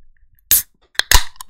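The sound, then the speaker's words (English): A can of White Claw black cherry hard seltzer cracks open with a sharp metallic click, then a quick series of bright pops and a short fizzing hiss of escaping carbonation, loud against an otherwise quiet background. “Let's get that open.”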